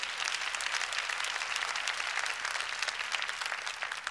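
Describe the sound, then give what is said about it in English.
The tithers in an audience clap their hands to praise God: steady clapping, a dense wash of many hands clapping at once, holding an even, fairly loud level for several seconds without any voices. “All you tithers, clap your hands and praise God.”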